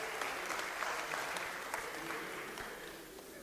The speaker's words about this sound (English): They're clapping. The announcements are done. They're happy you're through. Happy I'm through.